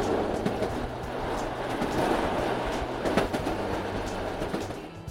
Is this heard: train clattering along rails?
yes